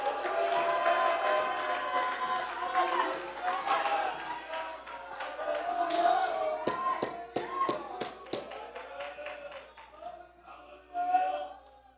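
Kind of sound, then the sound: crowd, audience shouting and cheering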